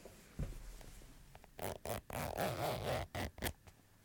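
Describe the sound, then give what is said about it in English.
A small zipper on a little clutch bag is pulled open in a series of quick, scratchy bursts, fairly loud, with brief pauses between the tugs and a few faint rustles before it starts. “I'm just going to have to zip it open.”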